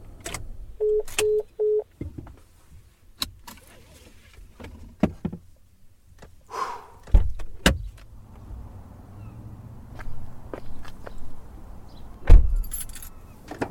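Someone climbs out of a white truck in the Maryhill State park parking lot: three quick chime beeps, keys jingling, shuffling movement and a couple of sharp door clunks over a low idling rumble, with no talking.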